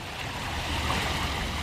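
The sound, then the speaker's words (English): Stream water flowing and riffling in a steady, continuous rush, fairly loud, with a constant broad hiss and no voices. “What I think the main thing for me is actually the sound of the water. Being able to hear the water as it flows, as it riffles through.”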